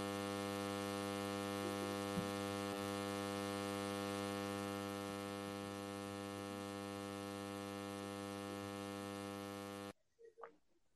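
A steady, loud electrical buzz of interference on the line, with a rich harmonic hum, drones continuously for about ten seconds, then cuts off abruptly, leaving a few faint scattered sounds.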